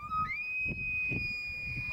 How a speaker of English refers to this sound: when I was crying, would always play an elk bugle, and I would stop crying